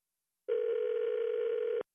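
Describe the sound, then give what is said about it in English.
A telephone rings once with a steady electronic buzz lasting a little over a second, clear, then cuts off sharply. No one speaks. “My other phone is ringing, okay?”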